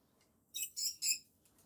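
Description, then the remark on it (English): Pet birds let out three quick, bright chirps in a row, each a short squawky burst, heard alone with no talking around them. “The birds love those toys.”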